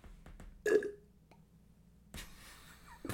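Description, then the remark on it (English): A short, wet slurp of a drink with a low gurgling tone, followed a little later by a longer, hissy rush of noise. No one speaks. “I'm sorry if you heard my slurp.”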